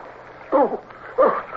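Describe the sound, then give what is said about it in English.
Two heavy splashes, roughly half a second apart, as two people struggle side by side in the water, over a low steady background wash. “How long we struggled side by side in the water until he spoke to me again, I don't know.”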